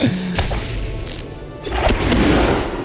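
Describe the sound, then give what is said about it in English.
A few sharp twangs and thwacks of arrows shot from a bow, snapping out in quick succession over a low rumbling background with no talking. “Since you won't believe me, I'll just shoot you with my bow and arrow.”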